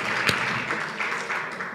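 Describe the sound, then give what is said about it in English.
A brief burst of steady audience applause at a Shabbaton, many hands clapping together in a dense, even wash of sound, with one sharper clap standing out near the start. “Okay, more applause.”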